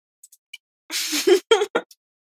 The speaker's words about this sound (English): Yeah. Hi, girl. Oh, she sneezed.